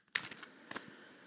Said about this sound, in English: Here we go. Shuffling, asking the spirit of the tarot humbly.